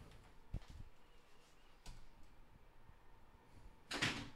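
A door closes nearby: a couple of soft bumps and knocks, then a sharper, louder latching thud near the end, against a faint room hum with no talking.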